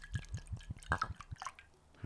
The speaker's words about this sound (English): It was a bit of a naughty one, but it's going to be with that narrow neck. Yep. All these naughty narrow necks. Naughty, naughty neck. Do you want me to pour you? Yes, please. Thank you, sir. It's a pourer, not a glugger, too. Oh, no, it's a glugger.